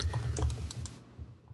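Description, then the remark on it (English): Rapid, frantic keyboard typing, a dense burst of clattering keystrokes that thins out and stops after about a second, with no talking. “Somebody frantically typing the missing season.”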